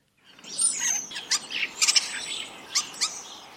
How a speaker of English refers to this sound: But onto a different bird now, and that's the starling. Now, these always used to be regarded as a little bit of a sort of a scruffy looking bird. Let's just hear their song for those who might not be so familiar.